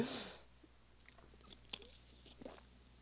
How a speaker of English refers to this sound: Taking a big drink, big gulp. Yes, thirsty.